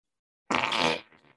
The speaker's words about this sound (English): farts are fun, but she will let them rip now